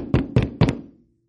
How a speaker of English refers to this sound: And there's a knock on the door of the king's door.